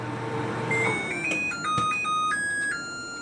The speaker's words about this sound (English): As an example of a company taking things a little too far, here's someone on YouTube demonstrating the sound of her new LG microwave.